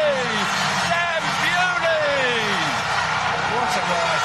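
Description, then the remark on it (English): A speedway crowd at the Principality cheers Dan Bewley home to victory in a loud, steady roar, many voices blending into a dense wash with individual shouts rising and falling throughout. “Listen to the crowd.”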